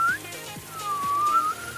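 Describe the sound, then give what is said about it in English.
A thin, breathy inward whistle: a short high note, then a longer tone that dips and slowly rises again, with soft background noise and no talking. “I can whistle inwards.”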